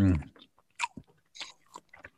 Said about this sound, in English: You suck on your vape and I'll chew my sandwich at the same time. Right, here we go. After three, three, two, one, suck.